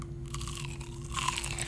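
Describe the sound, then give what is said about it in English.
A close-miked, crunchy bite into a fried chicken tender with house sauce, with a burst of crisp crackling followed by loud chewing crunches, no talking. “I'm gonna try to get close to the mic here for you so I can get a crunch there.”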